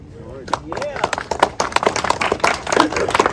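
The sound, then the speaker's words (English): An audience in Memphis applauds a speaker called up to talk about support for a soccer venue, with a steady patter of many overlapping claps lasting the whole few seconds, with a voice briefly audible beneath the clapping. “I get applause.”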